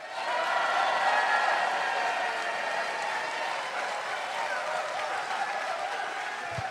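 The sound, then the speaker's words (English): An audience at a United Kingdom pun championship erupts in sustained screaming, cheering and applause to vote for a contestant, a dense, loud wall of voices and clapping that holds steady for several seconds before tapering slightly at the end. “should be the main pun champion of the United Kingdom in 2016, scream and shout.”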